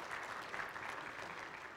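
An audience applauds together, a dense, steady wash of many hands clapping at once that holds at an even level throughout, with no voices breaking through.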